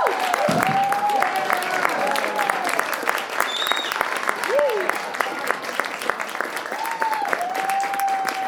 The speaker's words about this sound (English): Well, can we get, let's give another round of applause for Desmond. How amazing.